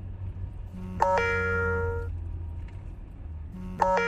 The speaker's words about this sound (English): darling, that's your phone.